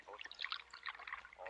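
food or drink, coffee being poured

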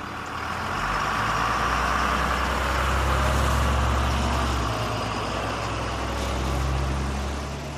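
vehicle, bus engine idling

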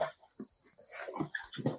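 animal, dog

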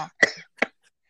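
human body sound, coughing

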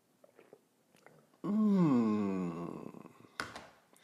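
food or drink, sipping coffee

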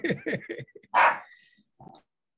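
animal, dog barking

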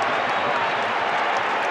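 crowd, basketball arena crowd cheering

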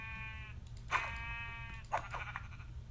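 animal, video game sheep bleating

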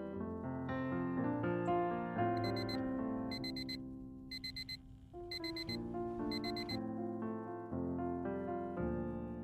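household object, alarm clock ringing

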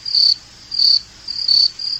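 insect, crickets chirping

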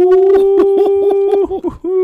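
animal, dog howling

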